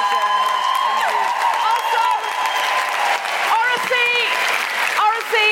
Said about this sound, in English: Big round of applause. Thank you.